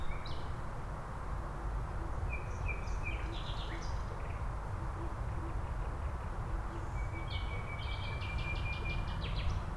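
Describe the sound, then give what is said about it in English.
A nightingale in Berlin sings two bursts of rich, varied phrases, one early and one near the end, over a constant low throbbing rumble. “Berlin is the nightingale capital.”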